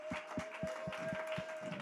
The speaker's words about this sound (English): Come on. That hand clap, oh, clap your hands, all ye people, and shout unto God with a voice of triumph.